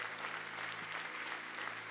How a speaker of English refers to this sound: Yeah, come on, let's clap our hands for every hand in this place, family worship room, all over the place.